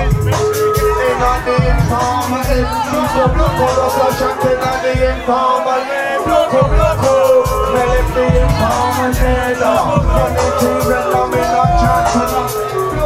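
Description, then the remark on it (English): A loud, packed live grime show in 2015 in a basement in the Shoreditch neighborhood of London: veteran MCs perform as a heavy, thumping bass beat drives the music while a dense crowd of fans shouts, whoops and screams continuously, energetic throughout. “in a packed basement in the hip Shoreditch neighborhood of London, veteran MC … and … of legendary grime group … are playing to a screaming crowd of fans”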